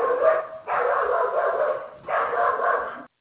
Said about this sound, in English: And evidently your dog agrees. Sorry, that was mine.